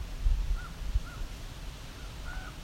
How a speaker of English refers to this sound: That sounds like a raven. So we've got a raven coming from the other direction. Here it comes. I can hear it, but I can't see it. Might be going away from us now.